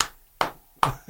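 Three sharp hand claps in an even, steady rhythm, each a bright slapping crack with a short ringing tail, followed by a fainter fourth tap. No one speaks.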